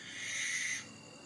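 A barn owl gives one harsh, raspy screech lasting under a second, loud and hissing in tone, then cuts off into quiet background. No voices are present.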